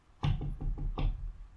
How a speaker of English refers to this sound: So, you actually do knock on the door that is Braca's.